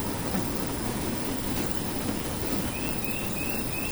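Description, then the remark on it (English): A huge swarm of bats in Texas pours out together, as it does every day at the same place and time, a dense, steady fluttering roar like heavy rain that never lets up, with faint high squeaks streaking through near the end. “There's no freight train rumble that we often hear associated with tornadoes. In fact, you're listening to it right now.”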